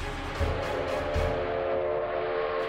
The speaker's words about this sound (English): Both engines shrieked their terrified whistles.